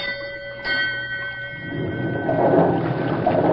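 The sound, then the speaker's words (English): A steady mechanical hum gives way to a rising, rushing churn of water that grows louder and rougher as a steamboat's paddle wheel is turned up hard from the engine room, thrashing the river. “Signal the engine room to turn up the paddle wheel hard.”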